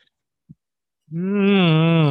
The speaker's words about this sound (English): Bro, it's our dog.